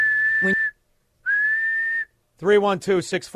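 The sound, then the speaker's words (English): A whistle is blown in two long, steady shrill blasts separated by a brief pause, loud, followed by a person starting to talk. “If you think you might commit sexual assault, always carry a whistle.”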